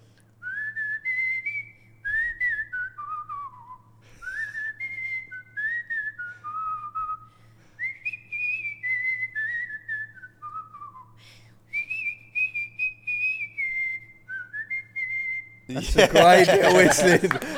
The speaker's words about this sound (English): That's a great bit of whistling. She can even whistle good. Listen, she can whistle good, mate.